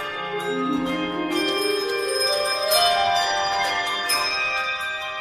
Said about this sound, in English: Yeah, you only hear this during December. What is it? Like the New York City Ballet? No. That's a bell choir. Oh. Bell choir.